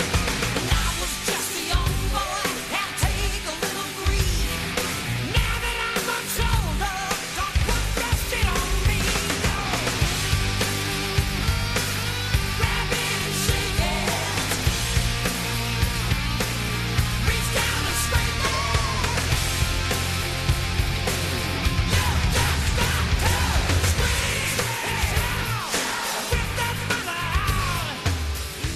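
A hard rock song plays loud and dense for the whole stretch, with thick distorted guitars and steady pounding drums driving a constant, unbroken wall of sound.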